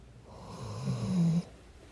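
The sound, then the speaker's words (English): A dog snores once at home, a low rumbling inhale that builds and cuts off sharply, followed by quiet with no talking. “oh my gosh, the dog. I'm going to see if I can get him to snore into the”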